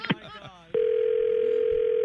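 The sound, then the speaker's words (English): A brief burst of speech cuts off abruptly as the caller hangs up the phone, replaced by a steady, loud telephone dial tone that drones on evenly after the line goes dead. “I'm going to hang up now.”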